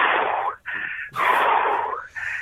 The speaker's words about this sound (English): Well, I was doing some deep breathing. I wasn't doing nothing rude. Well, it sounded a bit mucky.